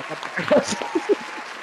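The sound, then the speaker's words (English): An applause sound effect: a brief burst of applause, a dense patter of clapping with a couple of louder voice-like bursts, lasting under two seconds at moderate volume. “I put some applause sound effects. No, there's applause.”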